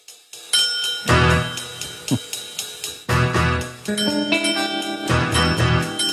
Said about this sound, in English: Ooh, it's very like James Bond too, except for the bell.